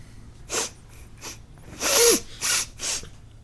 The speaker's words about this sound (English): So, the two figures reach the edge of the wood. They stop for a second, and you hear sniffing, and it gets louder.